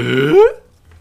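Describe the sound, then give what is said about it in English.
A man's voice imitates Tim Allen's grunt from the sitcom Home Improvement: a single throaty, voiced growl lasting about half a second, rising in pitch as it swells louder, then cutting off into silence. “Let me just get a clean Tim Allen noise for the audio.”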